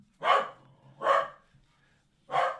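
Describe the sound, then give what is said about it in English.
A corgi named Memphis barks three times, sharp yips, the first two in quick succession and the third after a longer pause, with no talking. “That is our resident corgi.”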